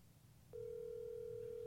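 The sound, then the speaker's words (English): A steady electronic phone ringing tone of a call to Bob Saget starts about half a second in and holds unbroken to the end, clear and fairly loud over a low background hum. “Ooh, it's ringing.”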